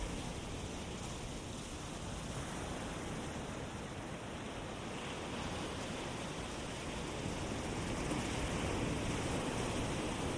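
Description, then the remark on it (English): A steady, rushing wash of waves on a shore, a continuous soft roar with little rise and fall, heard alone without any voices. “If you'd like, you can imagine yourself laying at the shore, just at the water's edge.”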